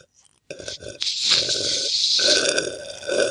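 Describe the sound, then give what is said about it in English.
A loud, drawn-out slurp of water from a cup during a slurping contest. It starts abruptly and runs for nearly three seconds as one continuous, wet, gurgling suck, with brief dips and surges partway through. “3, 2, 1, slurp.”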